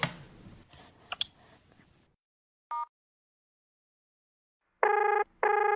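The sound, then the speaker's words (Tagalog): A phone's outgoing ringing tone for a call that goes unanswered sounds in two long electronic bursts separated by a short gap, preceded by a brief beep and some faint handling clicks and rustling. “Oh, nagre-ring yung phone niya.”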